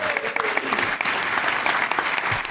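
A steady burst of applause, many hands clapping in a dense, even patter at a fairly loud level for a couple of seconds, with no one speaking over it.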